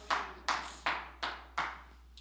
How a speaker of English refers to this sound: Let's clap our hands, Lord.